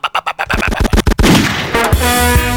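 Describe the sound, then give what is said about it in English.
A rapid burst of loud, echoing gunshot sound effects, dropped in while a tune is played in sound system culture, fires in quick succession, then blurs into a dense, reverberant barrage with a sustained tonal ring, like a sound-system dubplate blast. “And back in them days, when you'd play a tune, you just lego some gunshot.”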